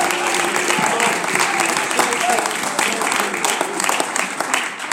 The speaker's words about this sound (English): Can you give God a hand clap of praise today? This is for God and nothing else. For God and no one else.